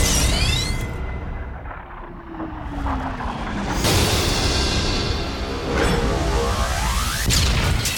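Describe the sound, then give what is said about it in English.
A sci-fi base cannon powers up with sweeping electronic whines over a dense, rumbling roar, then loud explosive blasts hit at intervals, layered in a thick, continuous wall of sound. “Power up the base cannon.”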